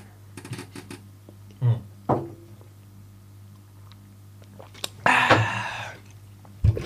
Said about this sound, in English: Don't slurp it in the mic. No. I was saying when I'm talking just now, not doing this sip. I thought you meant let them hear me sip my liquid.